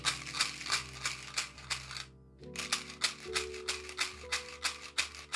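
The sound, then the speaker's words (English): A small box of chewing gum is shaken in a steady rhythm, giving bright, dry rattling bursts with a brief pause midway, over a low sustained tonal hum. “That was the chewing gum pause.”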